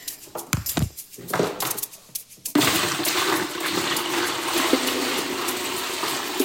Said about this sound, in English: I'm standing in my master bathroom shower. I've got several buckets of rainwater. It takes about 2 gallons to flush a toilet, and we go ahead and put it into the tank behind the toilet. So here you go.